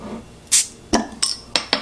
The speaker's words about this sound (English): Oh yeah. No problem there. The Cat bottle opener. Open the bottle perfectly.